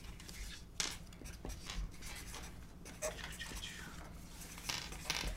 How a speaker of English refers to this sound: All right, let's get all these dice-a-roo back in here.